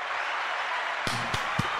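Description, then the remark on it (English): Live audience applause from a crowd on its feet at a show recorded live at the Goods Dispensary, a recreational dispensary in Davis Square, Somerville, Massachusetts: a steady wash of many hands clapping, dense and even, with a few sharper individual claps and a brief voice breaking through near the end. “Crowd is on their feet.”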